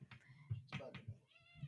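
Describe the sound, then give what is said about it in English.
A female cat meows at a man several times in quick succession, its high, tonal cries rising and falling, clear over a low background hum. “Oh, she's meowing at him. She is meowing.”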